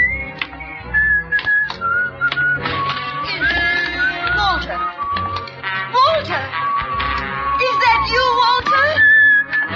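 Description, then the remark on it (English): A person whistles a melodic tune in clear, sustained notes, fairly loud, over a busy backdrop of sharp clicking and clattering sounds; in the radio drama Life Ends at Midnight, it is the whistle of the son Walter, which his mother recognizes. “You still remember my whistle, eh?”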